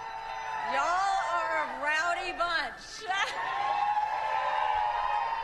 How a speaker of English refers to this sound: Yeah, all 15 of you. Thank you. That doesn't sound like much of a crowd.